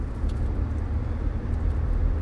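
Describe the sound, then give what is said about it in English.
A steady, deep rumble of a truck driving through traffic, heard from inside the cab, constant and fairly loud with no voices. “Holy shit, slam on the fucking brakes. I'm having a good day. I don't want to jump out of this fucking truck and choke you to death.”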